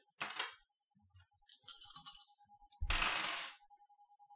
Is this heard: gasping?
no